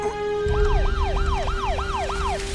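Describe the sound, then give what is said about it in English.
An ambulance siren wails in quick, repeated up-and-down sweeps, loud, over a low engine rumble and a steady whining tone, with no voices. “Who's driving this ambulance?”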